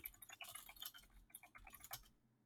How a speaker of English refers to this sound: Your typing is, like, very therapeutic. Oh, thank you. You can just come over and listen to me type sometime.